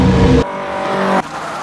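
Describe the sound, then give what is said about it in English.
A car swerves hard as the wheel is wrenched to the right: a loud burst of engine roar cuts into a sustained, high-pitched tire squeal that holds steady for under a second before dropping away to a quieter rumble. “I scream and wrench the wheel hard to the right!”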